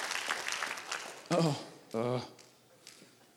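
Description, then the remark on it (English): A church audience gives the Lord a hand clap of praise in a dense, scattered patter for about a second, then two loud sustained voiced shouts rise over the fading applause. “Come on, church, give the Lord a hand clap of praise on that one.”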